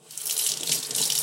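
Water runs steadily from a sink tap while dishes are washed, a continuous bright splashing hiss that starts softly and stays fairly even throughout, with no voices.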